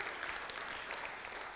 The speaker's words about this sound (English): The greatest, yeah, we can clap for that, all right? Yeah, the greatest comeback of all time.